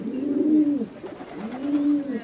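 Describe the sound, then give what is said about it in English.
Pigeons cooing in a park in New York City where a person feeds them: two soft, throaty, rising-and-falling coos, each lasting under a second, separated by a brief pause. No voices can be heard. “The person who's always feeding pigeons.”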